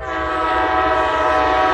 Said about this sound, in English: Can I have that ambient sound I recorded in Monroe yesterday as the Seattle-bound Empire Builder went past?